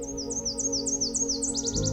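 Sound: nashville warbler song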